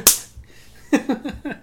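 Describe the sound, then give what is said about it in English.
A single sharp slap cracks out at the start, followed by a short pause and then a burst of rhythmic, voiced laughter-like sounds. “I'll slap you for that.”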